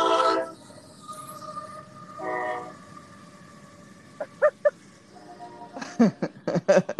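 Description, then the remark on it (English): A train rumbles past steadily, its horn blaring twice in short blasts, then a series of sharp metallic clacks from wheels crossing rail joints, fairly loud. “Yeah, our whole building literally does shake when a train goes by.”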